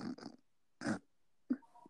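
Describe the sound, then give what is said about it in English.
A person imitates a dog's snoring with a few short, snorting nasal bursts in an uneven rhythm, separated by brief pauses, with no talking. “She is the worst snorer. She snores like your dad. It's like this. She goes like this.”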